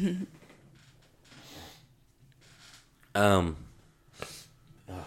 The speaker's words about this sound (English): excuse my sniffling, I'm getting over some allergies.